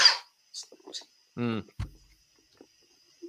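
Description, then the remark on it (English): A burst of coughing from a man: several short, harsh coughs in quick succession, one ending in a voiced, throaty rasp, with brief silences between them. “Let him cough it out, kids.”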